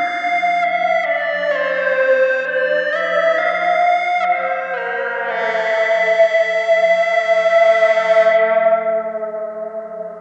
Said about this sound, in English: And I'm gonna show you one more thing with this patch that I made with the ghost reverb. I turned the delay down, and then I really turned the reverb time up super high and the mix up super high, and used a EBow. So check this out.